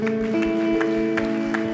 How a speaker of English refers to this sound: And someone said, come on, can we give a round of applause today?